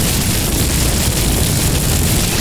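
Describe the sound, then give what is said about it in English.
A video game lightning bolt spell blasts continuously, a loud, dense crackling roar with a heavy low rumble that holds steady for the whole moment, with no talking over it. “Lightning bolts.”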